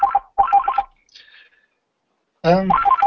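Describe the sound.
A telephone rings in two short, clear warbling bursts, followed by a brief faint pause before a person starts talking.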